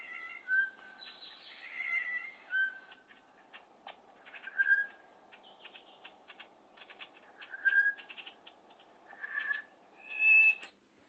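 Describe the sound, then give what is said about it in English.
A Woodward's Batis calls with a series of clear, whistled notes spaced a second or two apart over a steady background hiss, while a person whistles along imitating the call. “Yeah, so that's the Woodward's Batis.”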